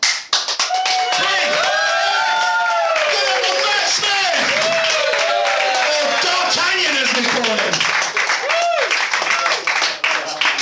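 A crowd claps steadily for about ten seconds to welcome a performer onto the stage, a dense patter of many hands, with whoops and shouted cheers rising over it. Loud throughout.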